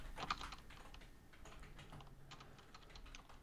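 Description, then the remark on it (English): Rapid, steady clacking of a computer keyboard as someone types a web search, fairly quiet, with a sharper keystroke near the start and a continuous patter of keys throughout, no voices. “You heard the keyboard clacking.”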